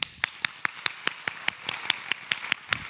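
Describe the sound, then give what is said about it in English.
An audience at City Gate Church claps hands together in a steady, brisk rhythm, about a dozen sharp claps in quick succession, unaccompanied by any talking. “So it means, number one, to clap.”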